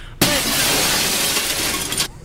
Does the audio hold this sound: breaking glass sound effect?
yes